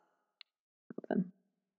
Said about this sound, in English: So like here, I've got two Tektites, right? So this is two Tektites hitting each other, right? Versus the chiming that you just heard.